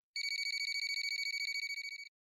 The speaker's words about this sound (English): And after a few moments, the phone rang.